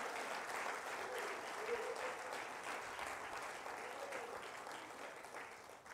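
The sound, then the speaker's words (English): A church audience at Grace Point claps their hands in steady, dense applause for a preacher during a morning service, loud and sustained without pause, with faint voices mixed into the crowd noise. “Come on, clap your hands and praise the Lord this morning.”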